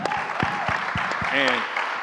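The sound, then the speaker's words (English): An audience claps in a steady, dense patter of many hands, with a short vocal cheer rising briefly above the applause partway through. “Yeah, clap it up.”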